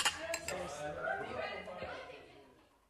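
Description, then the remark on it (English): A few bright glasses clink together in a toast near the start, sharp, then fade under low murmuring voices and a soft chuckle as the sound tapers off. “So I think we'll drink to that. Cheers.”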